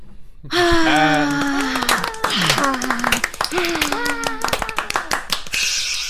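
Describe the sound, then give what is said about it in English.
Scattered, uneven clapping from several hosts over a call, the claps falling out of sync because of latency, made in place of an applause track, while voices let out long, wavering sung or wailing tones over the top. “With oh, we're just all going to start clapping? With latency.”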